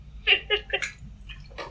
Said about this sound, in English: And now I need to take a drink of water after that.